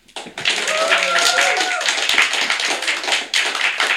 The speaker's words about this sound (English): Come on! Less fulsome applause for the supporting act that helped me with my singular performance this evening,